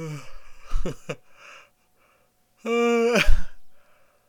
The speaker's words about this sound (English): Can't stop yawning. Oh man, 100% sounded like a deaf guy walking in on a surprise party.